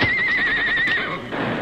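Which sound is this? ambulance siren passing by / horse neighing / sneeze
horse neighing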